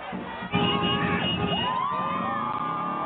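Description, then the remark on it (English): A large outdoor crowd of tens of thousands at a Pride parade along Mass Ave cheers loudly, with scattered whoops and high shouts rising over a dense, continuous roar of many voices. “The crowd started stretching down Mass Ave long before the parade started.”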